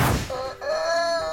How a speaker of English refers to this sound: What about the world's first ever cockerel off? 3, 2, 1, it's time to take on the cockerel!